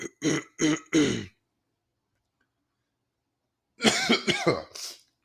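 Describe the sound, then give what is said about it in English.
Someone recovering from being sick coughs and clears their throat in a quick run of four harsh bursts, goes quiet for a couple of seconds, then hacks through another short cluster. No one speaks. “Sorry y'all for the coughing and stuff.”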